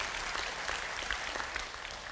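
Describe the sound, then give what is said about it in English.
A church crowd claps in praise of Jesus during a morning service, a dense wash of many overlapping hand claps holding an even loudness throughout with no voices over it. “Come on, if you guys are thankful for Jesus and what he's doing in your life, come on, let's give him a clap of praise this morning.”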